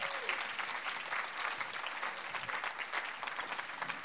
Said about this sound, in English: So, first of all, I would like to welcome Tom. So, can you give Tom a massive round of applause?